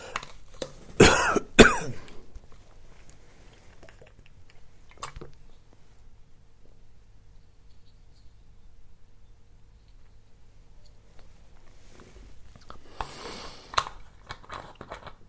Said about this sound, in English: And, oh, my throat's really playing up. I have to have another drink. Am I drinking water, by the way?